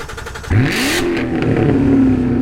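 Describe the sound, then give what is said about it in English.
A Daytona Sunrise Orange Metallic C7 Corvette with a manual transmission, parked in a strip mall parking lot. Its V8 engine fires up with a loud, sudden rev about halfway through, then settles into a steady, deep, throaty rumble. Nobody speaks. “It's a Daytona Sunrise Orange Metallic C7 manual Corvette.”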